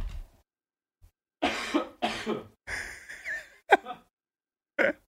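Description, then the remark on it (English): A harsh bout of coughing: four or five raspy bursts in quick succession, then a short pause and one last cough, with no talking over them. “I have to cough. Cough.”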